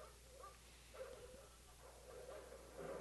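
A dog lets out a few short, yappy barks and yips at uneven intervals, fairly soft, over a low steady background hum with no talking.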